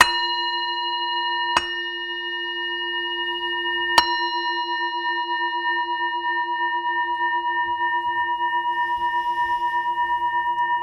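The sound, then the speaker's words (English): A bell is rung to begin a practice, struck three times in quick succession, each strike feeding one steady, ringing tone that hums on with a gentle wavering shimmer. No voices are heard. “Traditionally, the practice actually is done by ringing a bell, and in the ringing of the bell to open the heart, to just in that sound of the bell to create a kind of openness, a space.”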